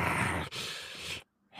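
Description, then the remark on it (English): A voice imitates heavy breathing: two long, raspy breaths in quick succession, fairly loud, then a brief silence before another breath begins. “The way he's breathing, dude. Like, he's like...”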